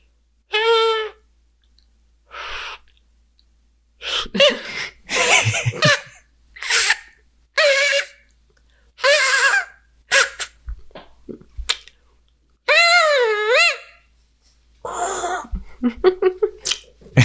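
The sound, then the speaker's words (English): A reed-made elk call, made with the reed in the mouth vibrating against the tip of the tongue: several wavering, high-pitched squealing tones that bend up and down, broken up by short sharp bursts and excited barks from a dog upset by the call, with no talking. “And that is a sound with a reed.”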